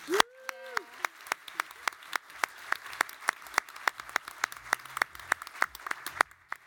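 Brisk applause of sharp, evenly spaced claps, roughly four per second, at moderate loudness for several seconds. A brief voice sound comes at the start, then clapping alone.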